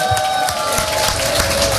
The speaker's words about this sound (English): Yeah, we can have a little round of applause.